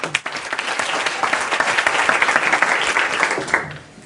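Audience applause: a dense wash of many hands clapping, fairly loud and steady for about three and a half seconds, then tapering off quickly at the end.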